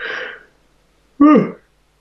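A breathy inhale, a short pause, then a loud, voiced yawn that swoops up and down in pitch before trailing off. No words are spoken.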